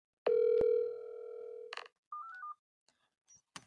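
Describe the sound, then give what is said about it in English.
A telephone ringing tone on an outgoing call to a leader of The Way Home, a group of wives and mothers of soldiers in the Russia-Ukraine war: one steady, loud electronic tone lasting about a second and a half, then a click, a short three-note beep sequence, and faint line clicks. “Yes, I've spoken to her over several phone calls in December.”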